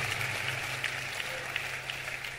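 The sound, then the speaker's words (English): An audience claps steadily, a dense, continuous patter of many hands with a few sharper individual claps popping out, holding at an even level throughout with a low hum underneath. “Listen, I'm talking about church, so you should be clapping well, because this is what church is all about.”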